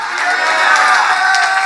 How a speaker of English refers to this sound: To be able to clap your hands, shout.